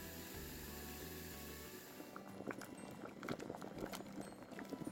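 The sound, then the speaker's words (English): A pot of water with linguine pasta cooking in it boils at a rolling simmer: a steady rushing hiss with a low hum at first, then irregular bubbling and popping, with no one speaking. “Once the pasta's in the pot, we're gonna let it cook for about 8 to 10 minutes, although it does depend on the type of pasta you're using.”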